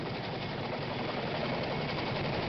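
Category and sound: vehicle, chinook helicopter arriving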